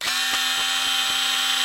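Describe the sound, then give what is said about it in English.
A Bosch electric screwdriver runs continuously with a steady, high-pitched motor whine and a faint low hum, broken by soft, evenly spaced clicks as it spins. No one speaks. “we've brought a Bosch electric screwdriver with this you.”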